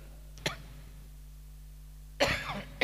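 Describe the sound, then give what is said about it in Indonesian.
Two coughs from a person: a short sharp one early on, then a longer, rougher cough near the end, with a faint steady hum beneath. “Seperti batuk gini.”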